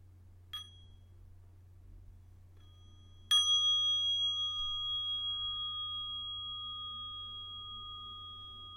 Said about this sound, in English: Whoop, wait a minute. Going too fast. It's time for the bell.